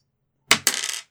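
A small four-sided die (D4) is rolled and clatters onto a hard surface: a sharp first impact, a second hit just after, then a brief bright rattle that fades out within about half a second.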